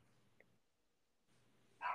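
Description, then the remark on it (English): A dog named Chloe lets out a single loud, sharp bark at the very end, after a stretch of near silence with only a faint brief chirp early on. “And she'll literally bark louder.”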